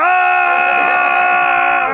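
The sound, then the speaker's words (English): A loud, sustained scream from a suicide bomber enemy in a video game holds one strained pitch for about two seconds without a break, harsh with a buzzy edge, and no talking alongside it. “And then the next thing you hear is the suicide bomber screeching.”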